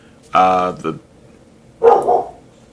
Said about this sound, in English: And there's the other dog. I don't know what's happening.